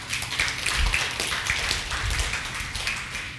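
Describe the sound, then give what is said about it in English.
A crowd claps steadily for a few seconds, a dense, continuous patter of many hands with no talking over it. “Yeah, somebody should clap for that.”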